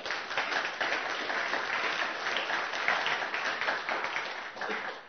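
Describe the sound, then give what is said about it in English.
A church audience applauds steadily to thank those who look after the children, a dense wash of many hands clapping at an even loudness for several seconds, with no one speaking over it. “So if you give them a round of applause.”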